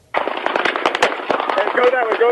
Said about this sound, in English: This video from police body cameras showing the terrifying moments bullets started raining incessantly Sunday night.